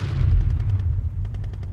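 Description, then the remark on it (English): Deep, continuous rumbling of explosions from an aerial bombardment makes the ground shudder in the rubble of a village, heavy, with a series of sharper cracks and thuds breaking through toward the end. No voices are heard. “The ground shudders from explosions all around us.”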